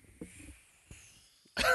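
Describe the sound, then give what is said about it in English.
A stifled burp: two soft, muffled low gulps escape in quick succession, followed after a pause by a sudden loud, harsh burst at the very end. “I'm sorry, I was trying to have a silent burp there.”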